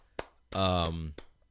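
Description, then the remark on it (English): A handful of sharp, separate hand claps ring out, with a sustained voiced shout or cheer filling the gap between them. The sparse claps sound more like one person clapping than crowd applause. “And if I can, now I want to give you an applause on that amazing, amazing write up.”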